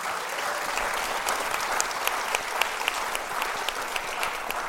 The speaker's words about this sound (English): And this week, we're recording We the People live in front of the National Constitution Center audience for the first time. Friends, let's have a round of applause for our We the People audience.